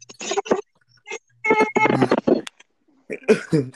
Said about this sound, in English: That was my balloon. I just kept squeaking the balloon.